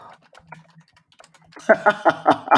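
Fast typing on computer keyboards by two people: faint scattered key taps at first, then a loud burst of rapid, clattering keystrokes in quick succession.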